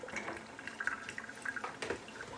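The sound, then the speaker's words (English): Water drips and trickles irregularly into a sink from an onion being rinsed with water poured from a jug, a quiet patter of small splashes with a faint running sound underneath and no voices. “So I'm just holding my onion over the sink and I'm pouring water and just giving it a little bit of a rinse.”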